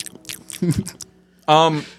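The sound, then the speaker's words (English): Open-mouthed chewing of a red bean snack: a quick run of wet smacking, crunchy bites for about a second, followed by a loud, drawn-out vocal reaction. “Can we get some ASMR? Stop. No, you have to chew with your mouth open.”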